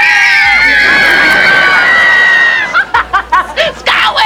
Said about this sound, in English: Okay, stop! Okay, scream with me now! Okay, over here! Quickly! Alright, you ready? Let's scream!